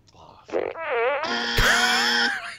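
A loud, drawn-out fart noise with a wobbling, buzzy pitch rings out for about two seconds, sounding like a novelty buzzer, with a brief vocal sound just before it.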